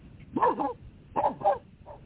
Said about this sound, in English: Pardon me, those are my dogs.